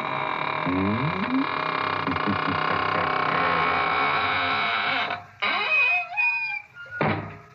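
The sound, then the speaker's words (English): A door creaks slowly with long, wavering squeals that rise and fall in pitch, then swings shut with a solid thud. Sustained tones drone underneath. “And now it's time to close the squeaking door, so good night.”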